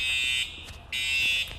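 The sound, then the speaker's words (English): A fire alarm blares during a mandatory fire drill in two long, piercing electronic bursts separated by a short pause, its shrill high-pitched tone loud and steady with no voices. “We apologize for that interruption. We had a mandatory fire drill.”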